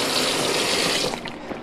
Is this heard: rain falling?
no